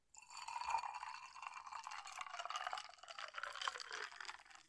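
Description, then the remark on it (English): Fizzy ginger ale pours steadily into a glass of whiskey over ice for several seconds, a bright splashing and hiss of bubbles with no voices. “Now, we're just going to listen to this pour.”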